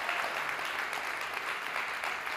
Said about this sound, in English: Christ loved the church. I love the church. Come on, clap your hands for the church today.